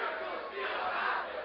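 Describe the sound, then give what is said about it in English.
A church audience screams and shouts together, many voices blending into one sustained, loud roar that holds steady for about a second and a half without a break. “Church scream, miracles still happen.”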